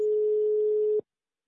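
A single steady telephone tone as a radio show connects a phone call, one unbroken mid-pitched hum holding for about a second, then cutting off abruptly into silence. No voices are heard.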